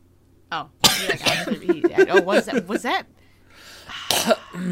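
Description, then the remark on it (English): A sharp, loud cough played from a soundboard bursts out near the start and another rough cough comes near the end, with voices talking animatedly in between. “Was that a soundboard cough again?”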